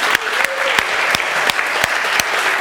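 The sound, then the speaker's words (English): An audience claps steadily for surveyors, estate agents and landlords who have stood up, a dense wash of many hands and a few sharper individual claps cutting through at a quick, irregular rhythm. No voices stand out. “Can we just applaud these people?”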